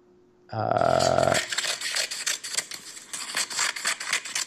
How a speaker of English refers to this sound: it's someone cutting paper. Oh, okay, somebody cutting paper.